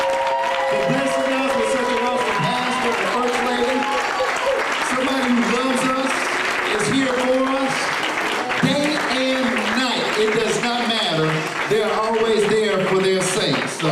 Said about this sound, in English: Let's stand and give God a hand clap of praise.